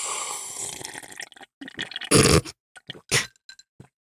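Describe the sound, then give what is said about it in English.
Someone sips Gatorade from a bottle: a run of wet slurping and swallowing noises, with two louder, fuller gulps and a few small clicks in between, and no talking. “Let me take a sip of my Gatorade.”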